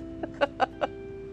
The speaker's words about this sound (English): Sorry about that. get away, duck! There's so many ducks. Oh, but these ones are scared. Okay, there we go. Go, go away.